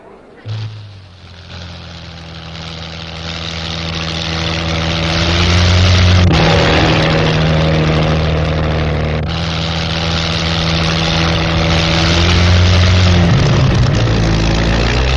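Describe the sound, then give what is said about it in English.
The engine of the Golden Arrow, Seagrave's land speed record car from 1929, roars loudly and steadily for the whole stretch. Its deep droning hum shifts in pitch a few times as it builds and settles, with no voices over it. “One of the most revolutionary cars of all appears in the last year of the 20s, the Golden Arrow.”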